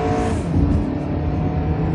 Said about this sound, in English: We had a little bit of traffic here. Oh, geez.